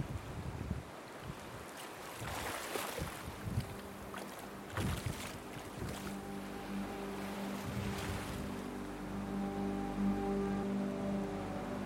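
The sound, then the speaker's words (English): Water of the River Thames in London splashes and sloshes amid gusty wind, with a low, steady boat engine drone rising in the second half. No one speaks. “And I think eventually I needed something like that to stay in London, and the Thames just became my ocean in the city, if you like.”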